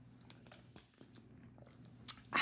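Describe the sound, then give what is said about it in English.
Someone takes a sip of Ice Mountain spring water from a bottle, with small wet mouth clicks and slurps, ending in a louder rustling burst. No one speaks. “So without further ado, let me get a little sippy sip here.”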